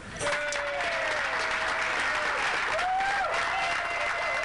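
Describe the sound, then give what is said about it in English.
Steady applause from a sizeable audience, loud and continuous for several seconds, with a few faint voices calling out beneath the clapping. The applause answers a question asking how many people are single. “How many people by applause are single?”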